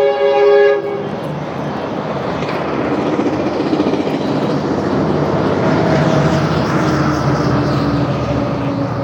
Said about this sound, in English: There's a train coming. It's the Metrolink. That's the one I take to work sometimes.